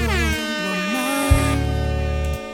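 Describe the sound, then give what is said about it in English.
Loud, blaring air horn blasts sound in close succession, two long harmonic-rich honks with a brief break between them, sustained and piercing with no talking. “Get some fucking air horns.”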